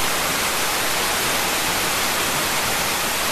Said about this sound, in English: That's just white noise.